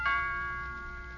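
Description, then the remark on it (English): A doorbell chime rings once, a single bright, clear tone that strikes and then hangs in a long, slowly fading ring with no voices over it. “You know, from now on, every time the doorbell rings, we'll sort of expect to see him back again.”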